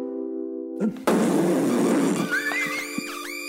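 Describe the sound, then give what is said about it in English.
A loud, drawn-out, sputtering fart sound lasting about a second, preceded by a low buzzing drone and followed by squeaky, rising whistle-like chirps. No one speaks. “You really want to fart? Are we talking real fart?”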